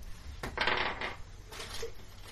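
Dice clatter and rattle across a table in two quick bursts, a longer tumbling roll followed by a shorter one, fairly clear with no talking, rolled for an attack that misses.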